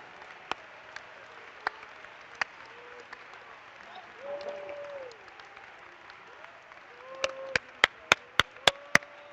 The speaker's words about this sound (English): Oh, clap your hands with me. Come on, let's clap our hands to him.